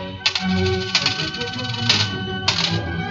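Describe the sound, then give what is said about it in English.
Gold coins clink together as they are counted from two bags, about four bright metallic clinks spaced unevenly, each ringing briefly over a low background murmur, fairly loud. “Then he took two bags of gold coins and began to count them.”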